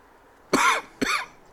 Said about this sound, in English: Oh yeah. Try it. Give it a shot. Oh, now I'm gonna cough again.